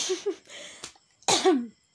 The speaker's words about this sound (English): Excuse me if I'm coughing. I don't know why. I don't have COVID. Or maybe I do.